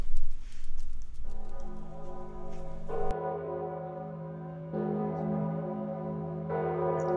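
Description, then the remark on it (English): A church passing bell, rung to warn of an impending death, tolls slowly and steadily, about four resonant strokes a couple of seconds apart, each ringing on into the next, with a rain-like hiss underneath at the start. “Legend has it that whenever a death is imminent within the parish of Llanwit Major, the passing bell is said to ring out over the town without the help of human hands.”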